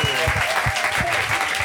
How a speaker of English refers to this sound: Guys, let's give one more round of applause to the panelists tonight.